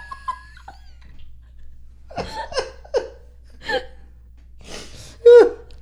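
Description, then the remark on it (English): A few breathy, drawn-out yawns from two people, with sighing exhales, ending in one louder, voiced yawn that rises and falls in pitch. “Oh my gosh, we both keep yawning so much.”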